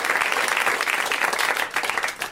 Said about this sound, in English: The comics are backstage. If you want to clap it up for them, they can hear you.